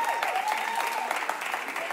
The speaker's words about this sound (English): Really? Golf clap?